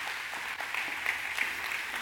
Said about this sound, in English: I mean, she goes all out. So can we just please give her a warm applause for appreciation. So thank you,